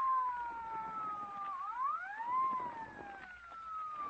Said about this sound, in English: Who's that? What chowderhead was stupid enough to use his siren? That's probably the Comey for you, sir. He's siren happy.